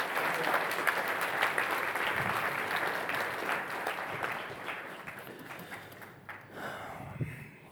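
An audience claps steadily for several seconds, a dense patter of many hands at an even level that gradually thins and softens toward the end.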